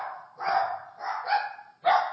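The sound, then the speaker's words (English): A dog barks three times in quick succession, sharp and fairly loud, with short gaps between each bark and no voices. “Okay, and the sound of the ridiculous barking dog says it's time to probably...”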